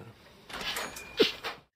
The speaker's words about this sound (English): Cha-ching. On the door. The tingle. The jingling door.